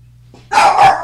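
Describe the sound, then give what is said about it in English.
A dog gives two quick, sharp barks in close succession, loud, over a faint low hum with no one talking. “Yeah, sometimes, except for when he barks during the podcast.”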